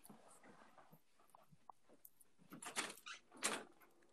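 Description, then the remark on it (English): A few quiet, scattered knocks and thuds on a door, followed by louder rattling, clattering handling noises near the end. No one speaks. “Sorry, I got a knock at the door.”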